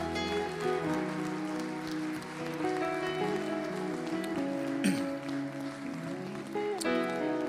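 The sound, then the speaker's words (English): A church audience claps steadily in praise of Jesus, producing a dense, crackling patter that holds for several seconds over sustained musical tones underneath. “Come on and give Jesus a hand clap of praise if you believe.”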